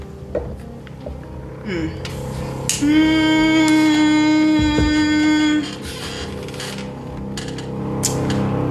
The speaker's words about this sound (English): Damn, this plane is loud.